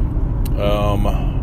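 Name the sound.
car interior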